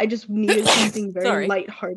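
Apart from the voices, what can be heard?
sneeze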